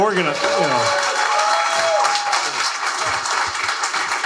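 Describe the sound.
A steady round of applause, dense and even throughout, with a few voices cheering and calling out over the clapping at the start.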